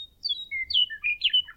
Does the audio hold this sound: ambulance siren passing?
no